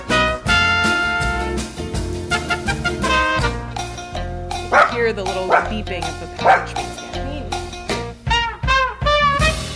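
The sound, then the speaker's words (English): A dog named Bean barks loudly and insistently, a rapid string of sharp woofs and higher yips that keeps going almost without pause for the whole stretch. “Bean really wants to chime in. He's really got a lot to say.”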